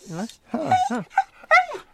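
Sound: dog whimpering and growling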